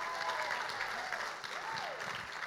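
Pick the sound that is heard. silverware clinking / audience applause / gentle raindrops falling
audience applause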